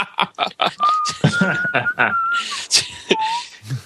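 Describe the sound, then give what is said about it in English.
A thin four-note whistle, the sound of trucks reversing in the nation of Pan Am, holds its steady notes in sequence, stepping slightly up and then down, layered over choppy vocal sounds and clicks that keep breaking in around it. “That four note whistle is the sound of the trucks backing up in the nation of Pan Am when you throw it into reverse.”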